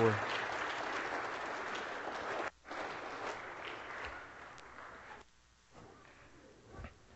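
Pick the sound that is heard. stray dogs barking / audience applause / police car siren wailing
audience applause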